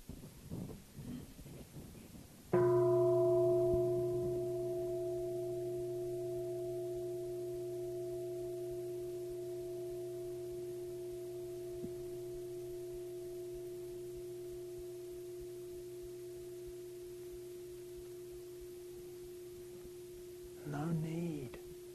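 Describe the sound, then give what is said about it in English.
A single meditation bell is struck once, and its deep, layered tone hums on steadily for many seconds, fading only slowly while a soft murmur of other sound rises near the end. “How do you experience bell without landing in just the bell where you lose the universe, or no bell where you lose the bell?”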